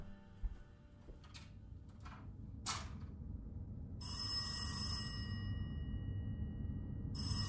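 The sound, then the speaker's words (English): An old-style telephone bell rings loudly in a long burst, then starts again, after a couple of short metallic clanks. A low background rumble continues, and no one speaks. “I'd turn off the TV, maybe get a book and read, doze a little bit, and then the phone rings.”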